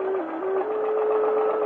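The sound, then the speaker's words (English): A sewing machine runs in a steady, continuous whir with a humming motor tone, fairly loud, with no pauses and no voices. “They never seem to pause for a deep breath or to look closely at anything as I look at my sewing machine.”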